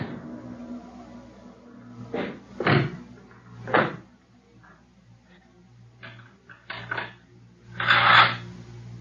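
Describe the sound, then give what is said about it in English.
A locked door is rattled and banged in a series of sharp, irregular knocks and jolts, ending in a louder, harsher bang, with a low steady hum underneath. “Oh, locked. This door's locked. Who's in there? Open this door. Open up.”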